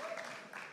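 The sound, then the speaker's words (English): Faint, brief audience applause, a soft diffuse patter of many hands clapping, blending into a low murmur of voices. “And you don't need to clap.”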